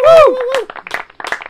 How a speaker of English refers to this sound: Yeah. Big round of applause.